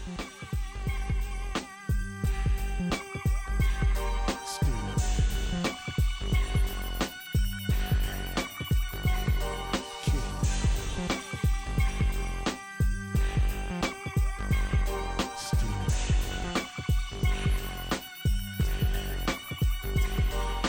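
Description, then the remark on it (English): A hip hop instrumental intro plays loud, with thumping bass kicks and a looping melodic backing repeating in a steady groove, and no vocals yet. “…. I'm just going to let that one speak for itself”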